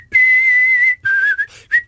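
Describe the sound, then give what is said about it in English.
A clear whistled melody by a man: a long sustained note, then a few shorter pitch-shifting notes ending on a quick rising chirp, with no talking. “But it's a good whistle, it's tuneful.”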